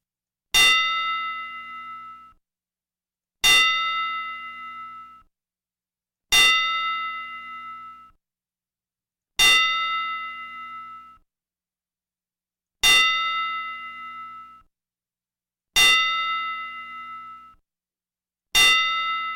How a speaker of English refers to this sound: So a tribute to Bruno and to Paul Jones a 10 bell salute.